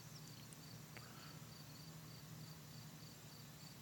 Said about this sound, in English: Crickets. Yep. Who needs sound clip when you have real crickets outside?